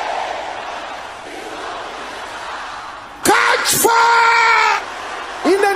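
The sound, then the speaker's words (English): A crowd of worshippers praying aloud shouts together in a loud, sustained roar lasting over a second, rising from a background of indistinct crowd murmur, then a second shout begins at the very end. “Can I hear you shouting this loud?”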